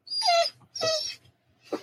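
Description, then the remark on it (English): A female dog whimpers in three short, high-pitched whines, the first two longer with a falling pitch, the last briefer and softer, in Kentucky. No one speaks. “And my dog just walked in with something.”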